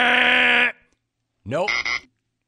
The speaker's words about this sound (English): Nope. That whiny little buzzer,